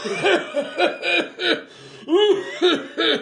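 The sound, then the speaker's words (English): A run of about six loud coughs in a steady rhythm, each a short harsh burst with a voiced rasp, coming roughly twice a second with a brief pause midway. “I want to cough, like right now. Well, turn your head and cough.”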